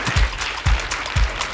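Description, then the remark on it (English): An audience claps steadily for a Congresswoman in a dense, crackling wash of applause, with low thumps recurring roughly every half second underneath. No one speaks. “Can we please give my sister, the Congresswoman, a round of applause and thank her for being here with us today.”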